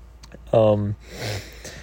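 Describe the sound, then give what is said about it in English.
A short voiced sound is followed by a breathy sniff drawn in through a congested, runny nose, the airy intake lasting under a second. “Maybe I do have a cold. I don't know. My nose is just really running.”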